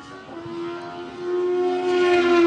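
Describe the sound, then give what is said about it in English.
A high-revving Starlet hill climb race car with a motorcycle engine passing by, its sharp buzzing whine holding steady and growing louder with a slight rise in pitch, the bike motor screaming near redline. “Oh, you guys got to listen to this little Starlet come by.”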